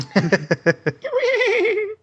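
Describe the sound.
A person imitates a horse whinny, starting with a quick series of about five choppy bursts, then sliding into a long, wavering, quavering neigh. It is fairly loud and has no other talk.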